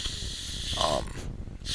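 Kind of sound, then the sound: human body sound, sniffing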